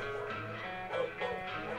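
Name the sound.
dog barking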